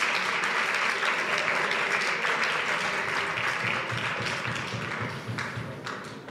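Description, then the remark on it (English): A crowd at a Shabbos gathering applauds themselves steadily, dense overlapping claps filling the room at full strength before gradually thinning and tapering off toward the end. No one speaks over it. “Go ahead, applaud yourselves.”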